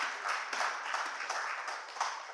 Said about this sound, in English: You can enjoy yourself. You can clap your hands. It's fine.